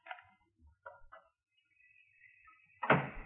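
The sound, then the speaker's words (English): A few soft clicks of a handle, then a thin, drawn-out hinge creak ending in a solid thump as a door leading to the garage swings open. No one speaks. “If I open that door and go to the garage, now go on.”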